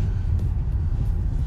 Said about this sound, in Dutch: Deze auto rijdt rustig achter jullie aan, zodat je niet al dat zand en stof in je bakkes krijgt.